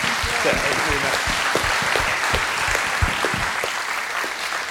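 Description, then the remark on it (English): Sustained audience applause for the volunteers, a dense steady wash of many hands clapping at a fairly loud, even level for several seconds, with faint crowd murmur underneath. “So can we just give a big round of applause to all of our volunteers?”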